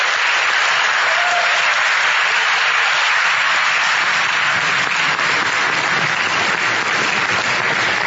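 An audience applauds steadily for several seconds, a dense, even wash of many hands clapping at once with no pauses or voices standing out.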